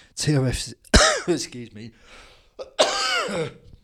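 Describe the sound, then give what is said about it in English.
A man coughs and clears his throat in a few rough, voiced bursts into the microphone, with a brief breathy pause between them. “For the coughing fits that I'm breaking into.”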